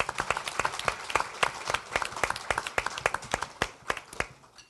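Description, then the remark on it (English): An audience applauds the library for several seconds, a steady patter of many hands clapping at once with sharp, bright claps standing out against the dense crackle before it begins to thin out. “So let's have a round of applause for the library.”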